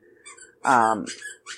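A dog, Odie, squeaks a squeaky toy: one loud, drawn-out, shrill squeal in the middle, with fainter, higher squeaks just before and after it.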